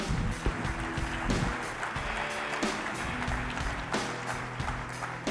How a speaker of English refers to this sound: And so give me a big round of applause and welcome to our stage